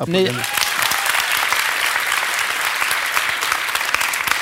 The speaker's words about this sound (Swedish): Men alltså, du med, ni som tycker om att åldras, ni applåderar nu.